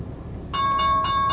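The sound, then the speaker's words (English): About halfway in, a loud bright bell rings for the stock market open and keeps going to the end, a steady metallic ring that pulses in quick repeated bursts, clear with no voices. “opening bell discussion”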